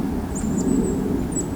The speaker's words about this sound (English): I'm hearing a very distant flyby of probably pigeons. Or ducks, or something with whistly wings.